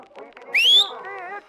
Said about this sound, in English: Did I nail it? Did I nail that? Yeah, I had no idea that you could whistle like that.